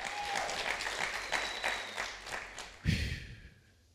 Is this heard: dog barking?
no